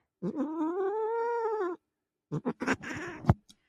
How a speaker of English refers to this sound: Oh, you can see his like mouth moving. He's like, what? His face looks mad. What's wrong? Apparently he got out 2 times today and he's been like mad about it ever since. He's like, I'm a street cat.